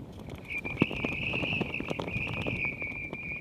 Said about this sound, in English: There are flags marking our safe route, and there's a bit of a whistling breeze today. I don't know, it's about 15 knots. I think the wind chill's about minus 19. And this bamboo stake is having a good old whistle as well as a flap.